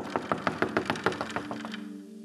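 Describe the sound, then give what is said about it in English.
A rapid, even series of about a dozen knocks on a door, steady, fading as a low sustained tone rises at the end. “Peter is at the door. And he's knocking.”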